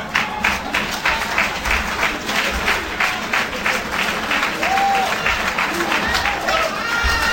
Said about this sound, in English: Listen to that applause.